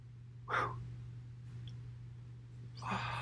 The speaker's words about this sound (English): Sorry if I made you guys yawn through the microphone. Sometimes that stuff happens, you know?